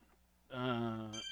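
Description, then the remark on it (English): A mobile phone rings with a short, bright electronic ringtone, a sustained tone lasting under a second followed by higher chiming notes, clear with no talking. “I have my phone ringing.”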